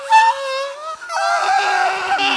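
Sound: voice imitating a scream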